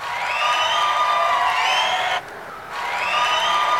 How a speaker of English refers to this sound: And the crowd goes...